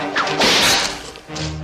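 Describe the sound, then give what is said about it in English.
A single loud whip crack from the Raiders parody opening of the 1989 film UHF, as Weird Al spins with a whip on a mountain and takes a guide's whole arm off; it bursts into a harsh, tearing impact and trails off in a rough rush of noise, with no voices present. “When one of his guides pulls a gun, Al spins with a whip and literally takes the man's whole arm off with it.”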